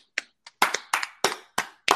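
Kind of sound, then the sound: sound effect, applause sound effect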